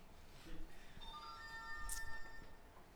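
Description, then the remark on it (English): A man's phone ringtone plays a brief electronic melody of several bright, steady tones lasting about a second and a half, fairly quiet against a soft background hum. “And his phone will go off just like that.”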